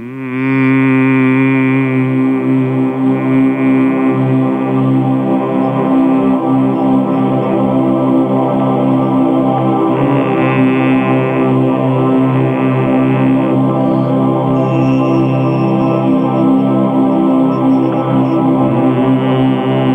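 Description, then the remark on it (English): A recording: a deep, steady Om hum drones without a break for the full twenty seconds, rich with layered overtones and holding a constant loud level, with no talking over it. “…, but I wanted people to hear it and realize that it's like it is ultimately the hum.”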